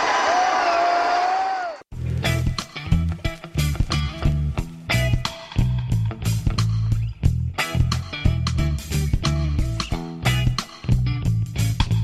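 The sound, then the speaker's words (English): A brief burst of crowd cheering with a shrill whistle on the Dude Grow Show, hosted by Snoop Dogg, lasting under two seconds, then cut off abruptly as a loud, bass-heavy beat with steady thumping drums takes over. “I said, is anybody in the crowd smoking on some of that chronic?”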